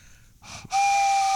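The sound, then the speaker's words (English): A breathy intake is followed by a loud, steady blast on a hand-whittled wooden train whistle carved from a backyard sapling: a sustained airy tone with a strong hiss that holds to the end. “I like to whittle in my spare time, and then I whittle it down to this... this train whistle, and listen to the timbre of it.”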